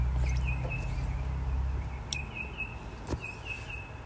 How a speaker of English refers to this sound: Oh, I just love the bird song.